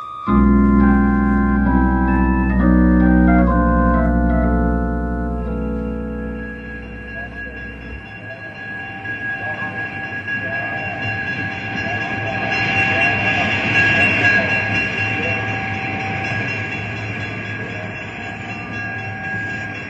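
A passenger train sounds a loud, chord-like horn in several held blasts, then rolls in with a steady rumble and clatter of wheels under a thin, sustained brake squeal.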